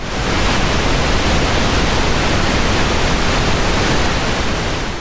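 Steady, continuous pink noise fills the whole stretch, a deep, even rushing hiss weighted toward the low end, loud and unchanging like a waterfall, with no voices or other sounds.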